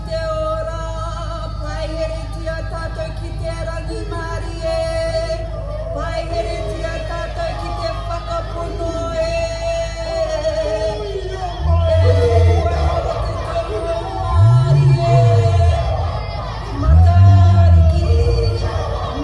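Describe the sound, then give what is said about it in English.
The soundtrack of the Matariki celebration LED light show in Queen's Park plays over a murmuring crowd, with dense layered tones and melody; in the last seconds three deep, swelling bass booms roll in, each louder than the last. “But I want you to listen to this. It was a light show with audio.”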